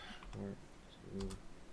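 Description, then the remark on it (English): Soft, scattered clicks of someone typing code on a computer keyboard, a few quick keystrokes in two short bursts, with a faint murmuring voice underneath. “The longest part is right typing all this code.”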